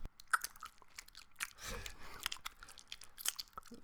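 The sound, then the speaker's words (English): Wet chewing of gum, with smacking and crunchy bites repeating irregularly for a few seconds and no one talking over them. “Isn't it weird how they just don't have chewing gum in Tower of God?”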